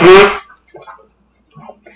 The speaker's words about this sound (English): I'm blowing my nose in anticipation.